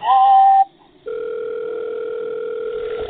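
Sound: telephone ringing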